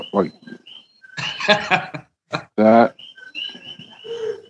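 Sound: frog croaking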